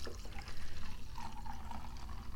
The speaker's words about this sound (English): And if you can't hear that, it's a lovely pour of wine. Every pour of wine is lovely.